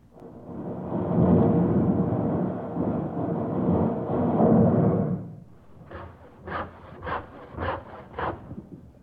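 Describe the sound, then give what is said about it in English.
Loud, dense war battle noise rumbles and roars for about five seconds, like explosions and gunfire blending together, then gives way to a quick run of six short, bright tonal bursts of song. “Well, the first sound was supposedly that of a war, and the second one was song, so that would be Warsaw in Poland.”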